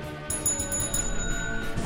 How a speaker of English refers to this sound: ring that bell.